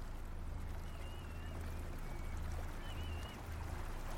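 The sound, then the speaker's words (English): Water washes and laps steadily around a small fishing vessel at the mouth of the River Tamar in southwest England on a cold, still, foggy morning, with a low, pulsing throb underneath and a few faint, thin whistles in the background. No voices. “Cutting through the fog that is hanging just above the water is a small fishing vessel”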